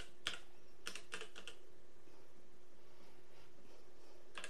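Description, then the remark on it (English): Quick, light keystrokes clatter on a computer keyboard in short irregular bursts as someone types in a search, a few taps clustered near the start and one more at the end, with no one speaking. “I'm gonna type it in just to see.”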